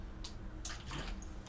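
Water runs briefly from a tap in a few short, splashy bursts as someone gets a drink of water, fairly quiet, with no one speaking.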